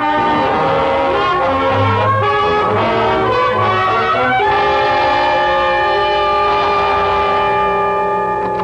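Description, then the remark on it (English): A loud, sustained train horn blares with rumbling rail noise underneath, the chord wavering and shifting midway as the train rolls past, with no one speaking. “Where there's peace, gentlemen, and quiet. Away from trains, gentlemen.”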